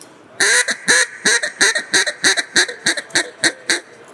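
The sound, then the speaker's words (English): A hen duck call blown in a bouncing sequence of about a dozen quick, nasal quacks, loud, with a steady rhythm and a slight tapering toward the end. “Bouncing hen.”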